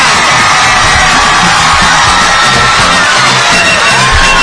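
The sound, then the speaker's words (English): A loud audience screams and yells continuously, a dense wash of cheering voices filling the whole few seconds with no pauses. “You're not all screaming happy.”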